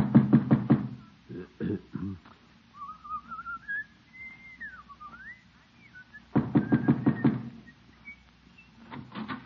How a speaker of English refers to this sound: Just knock on her door and get it over with. All right, by George, I will.